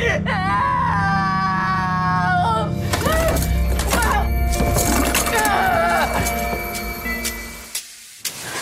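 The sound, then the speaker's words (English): A handcuffed person screams and wails loudly for help in long, strained cries, broken partway through by harsh, chaotic bursts of noise before fading to a few faint sounds. “You've wasted screaming for neighbors that are half a mile away, if they're even here yet.”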